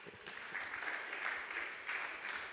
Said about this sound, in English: Praise the Lord. Clap for him.